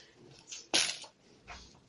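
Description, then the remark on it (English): Dice for a silent move roll clatter onto a hard surface, landing on 60: a soft rattle, then a sharp, bright clack that fades, followed by one more lighter tumble. No one speaks. “Okay, some dice.”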